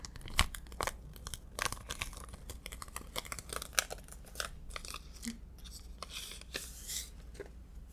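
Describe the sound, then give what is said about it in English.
Crisp tearing and crinkling of the packaging of a sterile gauze pad, a series of sharp rips and rustles spread over several seconds with no talking. “Some gauze, sterile gauze pad, and I'm gonna just wrap it on your head and then secure it with a band-aid.”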